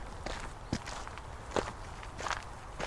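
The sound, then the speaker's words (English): Footsteps crunch and rustle through dry leaves on grass at a steady walking pace, heading back down to a path after hopping down from a rock, each step a crisp, crackling scuff with no voices over them. “Let's hop down from the rock and just walk through the leaves on the grass, back down to the path, hop across the wee burn.”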